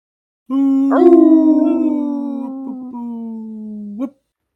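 One long, sustained dog howl that starts with a quick upward swoop, then holds a steady, slowly falling pitch for about three seconds before a short rise and cutoff. Loud.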